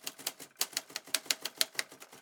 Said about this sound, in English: What are you typing? My resignation.